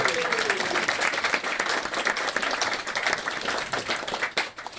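An audience at a live show bursts into sustained applause, dense overlapping clapping at a steady loud level for several seconds, with a faint murmur of crowd voices mixed in.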